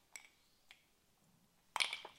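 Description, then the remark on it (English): A single ice cube clinks into a glass of banana liqueur: two light taps, then a brighter, ringing cluster of clinks near the end, fairly quiet with no talking. “Just one cube of ice”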